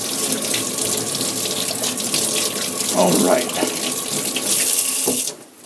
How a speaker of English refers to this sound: While that's going on, quick wash of the hands. Maybe not with quite that cold of water.